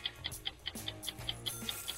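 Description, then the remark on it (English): A game clock ticks steadily and quickly, about five crisp, bright ticks per second, over a low humming musical bed with no one speaking, timing a 45-second round of a sports trivia quiz. “Start the clock, Danny. 45 seconds, and you're on your way.”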